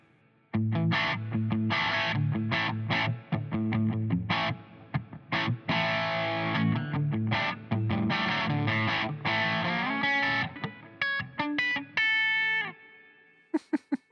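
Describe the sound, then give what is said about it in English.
An electric guitar plays a lively riff through a reverb effect switched on by tapping an iPad, with strummed chords and single-note runs drenched in reverb, the notes ringing and trailing off into a wash before a few final plucks near the end. “So the reverb.”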